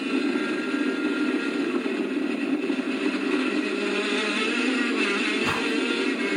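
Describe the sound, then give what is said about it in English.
A 125cc racing go-kart engine, on a go-kart of roughly 100 pounds, drones at a steady high pitch for the whole stretch at a racetrack oval, loud, with only a brief dip near the end and no talking. “That's a 125cc engine on like a 100-pound go-kart.”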